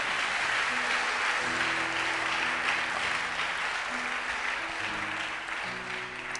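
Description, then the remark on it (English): An audience claps steadily as a dense, continuous wash of applause that stays loud throughout, with faint tonal notes like music or murmured voices underneath. “Oh, I thought you were going to clap more than that.”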